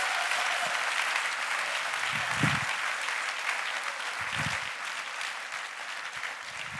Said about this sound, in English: I think we should give Jesus a huge round of applause.